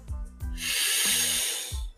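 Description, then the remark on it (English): A long, deep inhalation, a steady airy rush that builds and sustains for over a second, framed by soft low thumps at the start and end; a person breathing in as far as they can during a guided breathing exercise. “Just how far can you breathe in, right? Test your body.”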